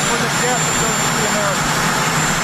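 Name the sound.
jet engine roaring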